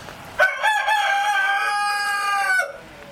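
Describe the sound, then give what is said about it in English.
A rooster on a farm crows a long, loud cock-a-doodle-doo lasting about two seconds, its harmonic call holding steady before cutting off, with no talking over it. “They really do, and they start about 3 o'clock in the morning. So I think one starts and then the rest start challenging, and it goes from there all day.”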